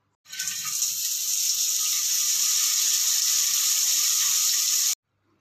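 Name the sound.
shower water running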